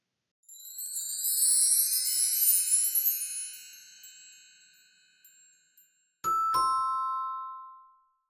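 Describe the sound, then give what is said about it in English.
A doorbell rings: a bright, shimmering chime swells and fades over a few seconds, then after a short pause a sharper, lower ding strikes and rings out. No one speaks. “Hey, Mom, Zach is at the door.”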